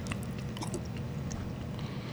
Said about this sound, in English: … biting in. What does he think? He's contemplating. He's chewing.